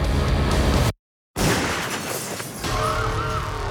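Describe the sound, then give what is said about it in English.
A gunshot from a real gun blasts through a glass door at Columbine High School, loud, with a dense crash of breaking glass, a sudden brief silence, then shards clattering and tinkling as the noise slowly fades. “The glass door shattered. That was no cap gun.”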